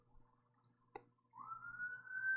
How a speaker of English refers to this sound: Sirens on my end.